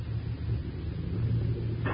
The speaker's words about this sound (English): Hey, that sounds like shots. Yeah, but what's that thunder? That's not thunder, partner. That's cattle on the move. That's Bolton's herd.